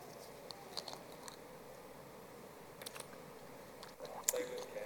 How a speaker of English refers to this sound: And let me just take a sip.